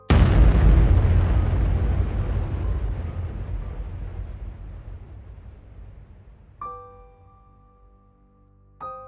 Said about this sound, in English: Suddenly, a whistle from the sky and a huge explosion.